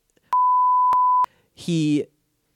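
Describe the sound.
A steady, high-pitched censor bleep holds for about a second, clicking on and off sharply, followed by a brief snippet of a voice.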